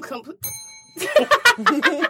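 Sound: bell sound effect ringing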